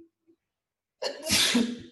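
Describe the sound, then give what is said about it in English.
A single loud sneeze bursts out after a second of near silence, a sharp explosive rush of breath with a brief trailing hiss. “Bless you.”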